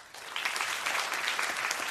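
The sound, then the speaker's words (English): A debate audience applauds steadily to show how many changed their views on the motion "Trump is making China great again" from yes to no, a dense crackle of many hands clapping at once that stays fairly loud and even for the whole two seconds, with no voices standing out. “How many people changed their views from thinking yes to thinking no? Just by a round of applause.”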